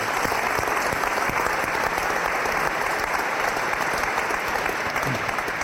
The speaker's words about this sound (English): So let's give Max a round of applause.